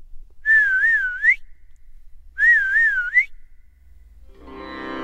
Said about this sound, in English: He was about to yelp when Hari once again whistled the same familiar tune.